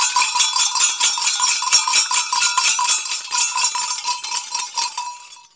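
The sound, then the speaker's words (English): Hand-rung school bells, rung by a storyteller, clang in a fast, steady shaking rhythm, bright and metallic with ringing high overtones, loud and continuous for several seconds before trailing off at the end. “But today, I'm ringing my school bells.”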